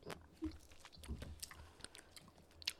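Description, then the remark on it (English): Crunching and chewing of a hard, brittle candy, with repeated sharp crackly bites and softer mouth sounds over about three seconds, no talking. “It's so crunchy, guys. You just hear the crunch.”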